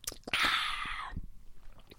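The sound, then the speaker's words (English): A loud sip of wine drawn in with a hissy slurp lasting about a second, framed by small wet mouth clicks and lip sounds, with no talking. “Time for a sip.”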